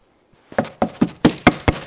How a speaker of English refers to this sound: But I would keep knocking and keep knocking.